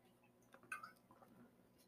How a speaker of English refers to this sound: Sorry, I had to drink some water.